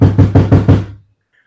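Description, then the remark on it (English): Five quick, firm knocks on a front door in an even rhythm, loud, each with a short woody thud, followed by silence, as a food delivery arrives. “All of a sudden, I hear.”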